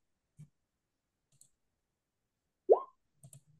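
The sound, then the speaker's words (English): A few sparse, quiet computer mouse clicks, spaced irregularly, with one louder short rising blip partway through, as someone clicks to re-roll the lowest dice in a game. “Click that, and then you can re-roll the lowest dice.”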